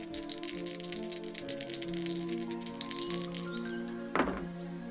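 Challenge dice in a tabletop roleplaying game rattle and clatter in a steady stream of quick clicks for about four seconds. They end in a sharper burst as they land on a 6 and a 3, over a soft sustained musical drone.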